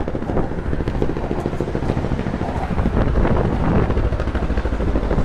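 A helicopter drones overhead, its low rotor thumping steady and continuous, fairly loud with a faint wind rush, slowly moving across without any talking.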